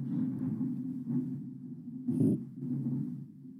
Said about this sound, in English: I heard it. I hope you did. That was lightning striking outside.